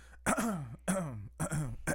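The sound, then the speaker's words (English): Three raspy throat clearings in quick succession, each a harsh guttural burst followed by a short gap, loud with no other talking. “But I do have to clear my throat. Let me clear my throat.”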